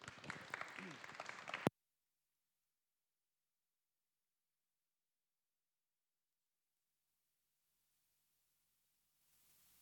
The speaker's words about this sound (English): Thank you for coming. Let's give this guy a clap.